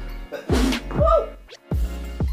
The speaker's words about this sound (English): I've never had a problem and had to sneeze at the same time, so I feel like the spirits are in the live radio right now, giving me problems and making me sneeze.